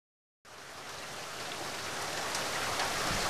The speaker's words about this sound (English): As if on demand, the deluge of rain slowed to a light drizzle as Detective H2O pulled to a stop in his rusty blue Ford. Water was in his blood, and weather like this always soothed his soul.